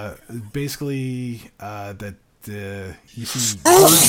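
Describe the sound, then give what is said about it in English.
A person speaks for a few seconds, then a single loud, sharp sneeze bursts out at the very end. “Bless you.”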